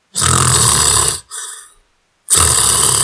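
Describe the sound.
A voice imitates a loud, rasping snore: two long, rough inhales separated by a brief wheezy trail and a moment of silence, harsh.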